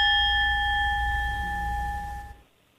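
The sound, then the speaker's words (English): A loud bell rings with a bright, sustained metallic tone that holds steady for over two seconds before cutting off abruptly. Low rumble sits underneath; no one speaks. “That was an awful big bell.”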